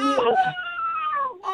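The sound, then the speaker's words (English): A dog lets out a drawn-out, warbling howl-like whine with rising and falling pitch, fairly loud, sounding almost like a sung phrase of speech, as if saying "I love you" on its owner's prompting. “I can make him say I love you if you want to hear it.”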